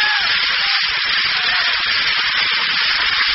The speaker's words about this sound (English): There's an airplane zooming overhead.